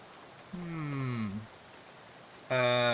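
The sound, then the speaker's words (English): Steady rain hisses throughout at moderate volume. Over it, a downward-gliding tonal sound appears briefly, and a louder, sustained buzzy tone starts near the end. “There were some other questions we could have asked, but it's raining.”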